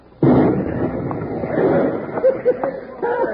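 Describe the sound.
A bomb with a short fuse, thrown out of a window, explodes abruptly and rolls on as a loud, sustained rumbling roar; toward the end, voices shout faintly over the fading blast.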